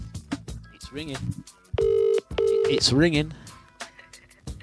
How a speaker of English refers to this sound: It's ringing. Let this brother not answer his phone. You're going to see what's happening. It's ringing. What do you reckon, guys? Come on, quickly place your bets. Will he answer?